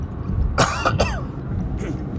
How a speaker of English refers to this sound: Excuse me while I cough.